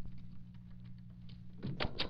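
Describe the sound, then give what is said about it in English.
A door slams shut with a couple of quick, heavy thuds near the end as someone comes into the house, preceded by a low, steady hum and faint room noise. “Axford must have come in. Axford! Axford! Slamming doors again.”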